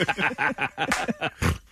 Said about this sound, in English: I snorted. Hey, snort. As you can imagine.